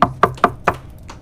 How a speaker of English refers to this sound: And here comes the knock on the door.